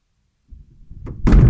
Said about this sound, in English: A door slammed.